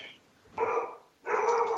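A dog barks twice, each bark a full, loud, harmonic burst with a brief tail, separated by a short pause, with no voices present.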